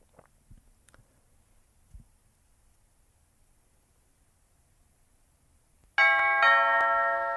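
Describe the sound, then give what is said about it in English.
A loud two-tone doorbell chime rings about 18 inches from the listener inside a tiny car, after several seconds of near silence with a few faint clicks and taps, its bright ringing tones sustaining to the end. “My doorbell is so loud because I'm in this tiny car and it's like literally...”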